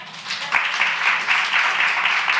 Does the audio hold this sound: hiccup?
no